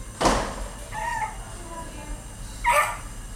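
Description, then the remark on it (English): A chihuahua lets out a few shrill, high-pitched yips with a short, thin whine in between. The barks are sharp and spaced apart. “Is it a chihuahua? It's a chihuahua.”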